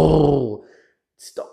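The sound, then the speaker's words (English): A voice makes a low, rumbling, buzzing hum imitating the purring motor of a new Ford F-150 being driven, for about half a second, fading out, followed by silence and a short breathy exhale. “Listen to the purr of the motor.”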